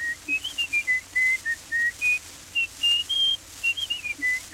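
A tin whistle plays a quick little tune of clear, high, breathy notes, a dozen or so in bouncing rhythm, heard on its own with no talking.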